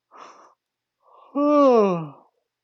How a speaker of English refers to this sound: Sorry for that yawn.